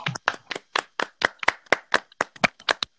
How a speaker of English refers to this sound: There we go. A little clap.